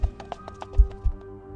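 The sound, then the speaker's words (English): Horse's hooves galloping: a quick, uneven run of sharp knocking thuds with low booming weight, half a dozen beats that thin out after about a second, with no voices. The horse is seemingly coming down the road. “At this point, all can hear the sounds of a horse's hooves galloping, seemingly coming down the road.”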